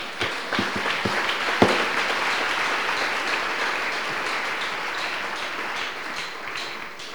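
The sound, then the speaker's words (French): An audience breaks into sustained applause, a dense wash of many hands clapping at steady loudness, with a few sharper individual claps standing out early on before the sound gradually thins. “Applaudissez pour lui.”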